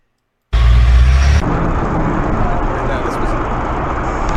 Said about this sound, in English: This one's crazy. I got like road rage. He bumps her and then, or bumps them and gets them going. And he's still going. He ain't hitting the brakes or nothing. He's like just dragging them down the fucking road.